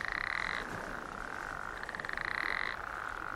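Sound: toads croaking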